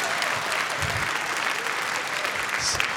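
A large audience claps steadily, a dense, even wash of applause that holds at the same strong level from start to finish with no clear pauses.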